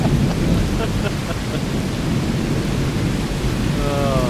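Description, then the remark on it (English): A heavy, close rumble of thunder from a lightning strike during a storm rolls on without a break over steady rain, loud and deep throughout, with a faint wavering tone creeping in at the very end. “That was pretty much a strike down.”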